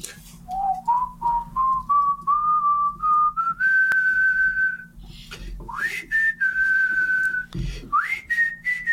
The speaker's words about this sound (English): You know how hard it is to whistle when you want to? It's impossible to whistle when you smile. Go ahead, whistle a little.